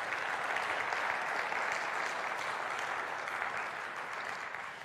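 A church audience applauds steadily for about five seconds as a guest comes to the stage, a dense wash of many hands clapping at once with no pauses and a slight fade toward the end.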